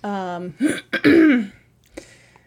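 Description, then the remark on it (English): Before reading an email aloud, a brief voiced hum leads into a loud throat clearing: a couple of rough, raspy bursts ending in a gravelly rumble, followed by quiet with a faint click. “Clear your throat.”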